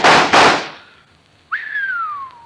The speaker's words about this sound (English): Smashed the 3 of them before they hit the ground. By thunder, that's what I call shooting.